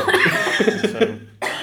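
A person coughs several times in quick succession, close and fairly loud, with a steady low hum in the background before a brief pause and another burst of noise.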